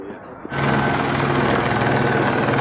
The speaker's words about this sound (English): Helicopters are swarming.